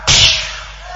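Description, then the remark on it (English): A father slaps his child on the face: a single loud, sharp slap, a crisp smack on skin followed by a brief ringing tail fading into quiet room tone. “Daddy, please slap here too because what I'm saying is true.”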